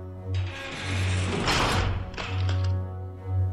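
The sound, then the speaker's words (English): A heavy door to a preparation chamber swings shut with a grinding mechanical clatter and a dull thud midway, over a steady low electrical hum that runs throughout. “Unlock this door to the preparation chamber, Pete. All right, go on to Gordon. Watch him, Pete. Now shut the door.”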